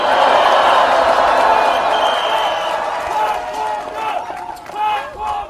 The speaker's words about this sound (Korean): 다시 한번 우리 박근범 원내대표님께 끈질한 동지의 박수를 부탁드리겠습니다.